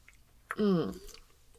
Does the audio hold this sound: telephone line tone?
no